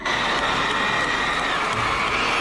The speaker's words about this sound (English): No, don't give me any applause for that. Come on, that was 2 seconds of content. That wasn't even 2 seconds. Don't applaud that.